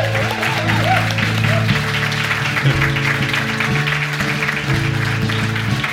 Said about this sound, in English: Even a little bit of applause wouldn't be a bad thing.